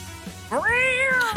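A single loud, drawn-out cat yowl rises in pitch, holds steady, then trails off. It sounds close and stands alone over a faint low background, with no talking.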